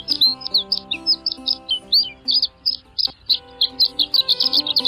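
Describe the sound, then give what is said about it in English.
A male horned lark's high-pitched, tinkling flight song, sung in spring during a courtship flight 800 feet or more above the earth: rapid runs of thin, bright chirps and trills in quick succession, fairly loud and continuous, with a faint low hum underneath. “Instead of hopping, the horned lark walks, and in spring, the male performs a courtship flight in which he ascends to 800 feet or more above the earth and sends forth a high-pitched, tinkling flight song.”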